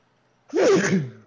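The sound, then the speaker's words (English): A single loud sneeze: a quick sharp intake and then a voiced, explosive burst that trails off within about a second, with quiet before it. “Bless you.”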